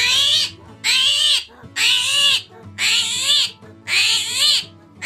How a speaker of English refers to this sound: There's a species of armadillo where you live in Paraguay called the screaming hairy armadillo. It has hair growing out of its scales and screams when it's in danger. This is what it sounds like.